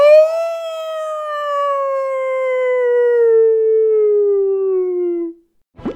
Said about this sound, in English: I can't say my line till he does his. Woof, woof, woof, woof, woof, woof.